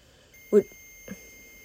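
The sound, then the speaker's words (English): Two short electronic alarm beeps about half a second apart, signalling a temperature change, the first louder and the second softer, over a faint, steady background hum. “That's letting me know that there's been a temperature change.”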